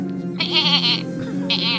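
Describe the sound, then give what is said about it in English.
Goats bleat loudly as they advance, one wavering cry followed by a second bleat, with the animals' calls overlapping in a quick, insistent burst. “So the goats are now advancing.”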